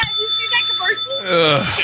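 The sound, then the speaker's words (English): A bright metallic gong, struck to cut off a performer, rings out with a sustained, shimmering high tone that lingers throughout, while voices carry on underneath it. “Thank you, Simon, for the gong on that one.”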